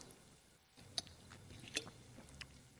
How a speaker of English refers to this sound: This water, that I'm going to take a sip of in a minute, will make me thirsty again.